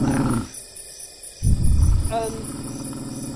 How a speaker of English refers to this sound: You both, you hear it make a sound that almost sounds like laughter. Like a jackal or a hyena.